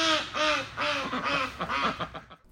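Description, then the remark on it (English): Several ducks quack loudly, a rapid overlapping series of nasal calls that keeps going for a couple of seconds before tapering off. “The animals are messy and dirty. Especially ducks.”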